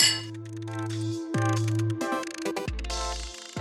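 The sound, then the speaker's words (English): Glasses clink together in a toast at a mead tasting, three bright strikes spaced about a second apart, each leaving a clear ringing tone that hangs briefly. Fairly loud, with no talking. “let's finish up the tasting to say, if you find a mead, buy it. Yeah. Cheers.”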